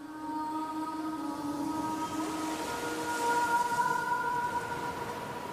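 Dreamy, sustained tones representing a mermaid (sirena), one low and several higher, float over a steady wash of ocean waves. The waves swell slightly louder midway while the gliding song continues, with no one speaking.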